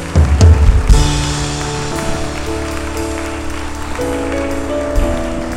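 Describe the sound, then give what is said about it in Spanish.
Loud, steady applause from an audience, a dense wash of clapping that surges at the start, with sustained keyboard chords held underneath and shifting partway through. “Dale un aplauso fuerte al Rey de Reyes.”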